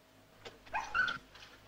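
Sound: dog whimpering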